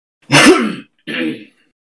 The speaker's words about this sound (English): That was a genuine cough that I needed to do. Because my throat was getting, like, really raspy.